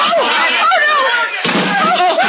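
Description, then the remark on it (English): During a bar brawl, a chair smashes with one sharp, loud crash partway through, over a noisy backdrop of several excited, shouting voices that continue before and after the impact. “Oh, another inch, Mr. Murch, and that chair would have parted your head.”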